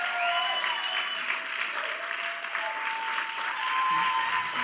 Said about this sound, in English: All clap loud for God, because he's the one who did it. All glory to you, God.